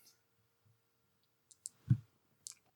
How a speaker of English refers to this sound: I'm going to end my turn there. And I'm going to roll 3 dice.